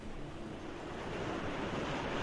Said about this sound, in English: Oh, those are waves. Yeah, he's on the beach.